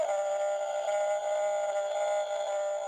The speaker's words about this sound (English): I like the howl the best. I'm playing it again.